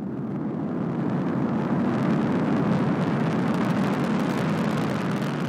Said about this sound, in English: Ignition sequence start. 6, 5, 4, 3, 2, 1, 0. All engine running. Liftoff.